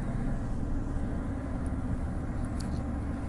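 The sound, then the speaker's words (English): Steady, enveloping low rumble inside a car in Australia on a warm day near 30 degrees, with the constant airy hiss of the car's air conditioning blowing over it; no voices, just an even, unbroken drone throughout. “So I do have the aircon in the car, but it's just fresh.”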